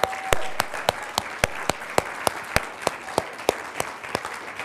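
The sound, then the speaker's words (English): An audience applauds military veterans and enlisted service members who have stood up, a dense, continuous wash of clapping, with sharp, evenly spaced claps cutting through at a steady beat, about three per second, for the whole stretch. “And let's just give them a round of applause and appreciation.”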